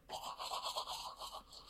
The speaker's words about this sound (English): Who's been using my toothbrush?